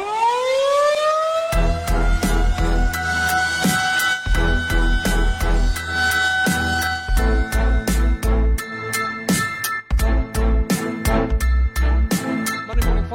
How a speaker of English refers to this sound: With my unwieldy collar, Pickle, hit the air raid siren. It's time for Monday Morning Fallout.